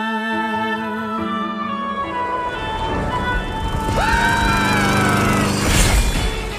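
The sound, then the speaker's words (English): Soft, sustained music gives way to a lawn mower's small engine sputtering to life and roaring loudly, with a rising mechanical whine over the last few seconds. “They get run over by a lawnmower.”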